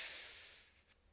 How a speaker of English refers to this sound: Everyone just collectively, let's do this all at once. Everyone just breathe in, deep breath in.